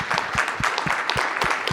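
A round of applause from a crowd, many hands clapping in a steady, dense patter with a few sharper individual claps standing out, fairly loud throughout.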